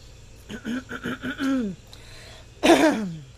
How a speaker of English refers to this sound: Gotta clear my throat.